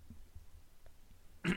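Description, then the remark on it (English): A quiet stretch with faint low rumbling, then one short, sharp throat-clearing burst from a woman right at the end. “She's back and she's back and she's clearing her throat.”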